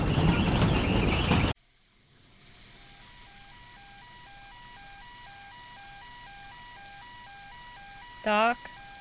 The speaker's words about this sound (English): It's the fire alarm. It's going off. We gotta get out of here.